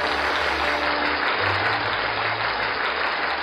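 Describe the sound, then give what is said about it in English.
Steady, dense applause from a crowd, louder than the music playing, a continuous wash of clapping that stays loud and even throughout with no voices standing out. “Applause is louder than the music.”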